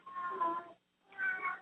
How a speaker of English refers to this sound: Somebody's kitty cat. Yes, I have a cat that's in heat. Oh. He's saying, let me out, let me out.